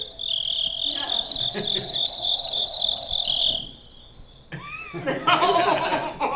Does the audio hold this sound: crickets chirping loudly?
yes